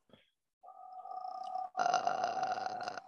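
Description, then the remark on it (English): A brief soft onset, then a steady voiced tone that breaks into a louder, rough creaky voice, buzzing with rapid tiny pops like bubbles for over a second, with no words. “this sound is made by the vocal folds being squeezed, so air can't get it”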